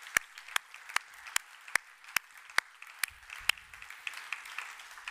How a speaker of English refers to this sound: Now, everybody involved in online church did a fantastic job. Actually, could we give them a round of applause? Because the people worked so hard.